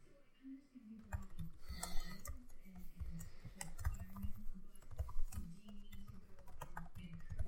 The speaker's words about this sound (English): I don't know. I'm just typing stuff.